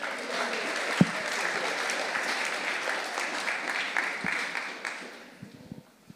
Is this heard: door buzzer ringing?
no